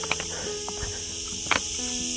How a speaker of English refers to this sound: Ooh, can you hear the cicadas now? They are kicking it.